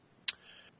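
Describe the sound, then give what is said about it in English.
A die clatters once against a hard surface, a single sharp click followed by a faint, brief ringing tail, with no voices around it. “And I'll go ahead and roll my negotiation.”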